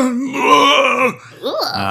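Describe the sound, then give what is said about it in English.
A voice imitates a monster's bestial yell: a long, loud, rough groaning roar with a sliding pitch, followed by a brief higher wavering cry after a short pause. “Lets out this, like, bestial yell.”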